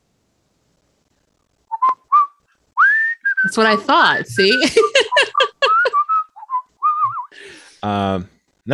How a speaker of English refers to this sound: Nope. The lie is I cannot whistle. For I can whistle. Yes. I am an avid whistler.